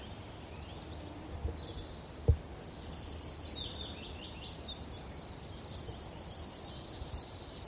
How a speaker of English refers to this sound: Yeah, there's a wood warbler here somewhere.